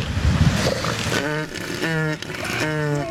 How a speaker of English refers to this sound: You're currently listening to Elephant Seal Mating on the Kiss Morning Freak Show. Sounds like a broken horn.